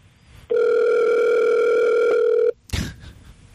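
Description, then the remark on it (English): A single loud, steady ringback tone of an outgoing phone call sounds for about two seconds, then cuts off abruptly, followed by a brief click or rustle. “We're going to call our Hollywood connection right now.”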